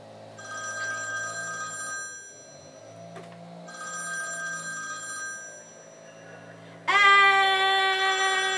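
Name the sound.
telephone ringing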